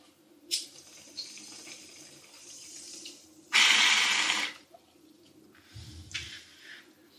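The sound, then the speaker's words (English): Bong water bubbling as someone takes a hit: a steady gurgling hiss swells into a loud, rushing burst, then trails off into softer intermittent bubbles. No one speaks. “Okay, taking a rip.”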